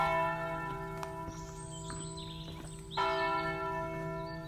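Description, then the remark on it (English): The bells of the La Verna monastery ring with rich, sustained overlapping tones, a fresh loud strike swelling the hum partway through. No one speaks; the bells fill the space. “You're hearing the bells of La Verna, the monastery where St. Francis received stigmata.”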